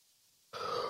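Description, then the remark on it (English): After about half a second of near silence, a yawn starts abruptly: a loud, breathy, voiced groan with a low rumbling edge that carries on to the end. “Sorry for the yawn.”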